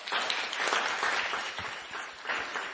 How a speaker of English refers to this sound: please give her a big round of applause.